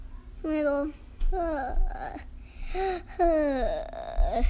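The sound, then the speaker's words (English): A voice imitates a long, drawn-out yawn: several stretched, gliding vocal sighs rising and falling in pitch, moderately loud, with short pauses between. “He yawned.”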